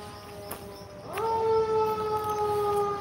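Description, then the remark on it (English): A fire engine siren wails with a steady, sustained tone that jumps up in pitch partway through, then holds loud and unbroken until the end. “What do we got here? Fire engine?”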